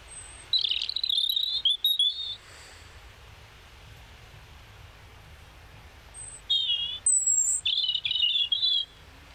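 european robin singing

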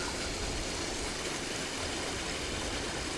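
flowing river water

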